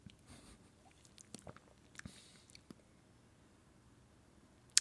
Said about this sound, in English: Let's see here. So I'm going to take a sip.